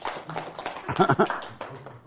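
Scattered audience applause, a brief smattering of clapping from a room, with voices murmuring through it before it fades out.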